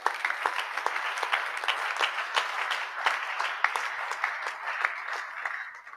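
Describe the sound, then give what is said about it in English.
A crowd applauds steadily for about six seconds, a dense wash of many hands clapping at once with sharper individual claps popping out, fairly loud and even, with no talk over it. “You are not clapping to Jesus.”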